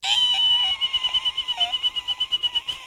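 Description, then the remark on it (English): A person whistles a long, shrill, steady note, and after a moment it breaks into quick rhythmic pulses, a vocal imitation of an audience cheering and clapping. “That was my noise of like an audience of people clapping. I was just whistling.”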